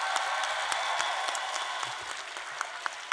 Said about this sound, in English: Before I announce these five folks, a round of applause for every poet that graced this stage tonight.